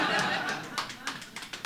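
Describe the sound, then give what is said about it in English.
A brief smattering of applause: a handful of scattered, uneven claps rings out after a moment of chuckling, fairly soft and sparse rather than a full ovation. “That deserves a smattering of applause.”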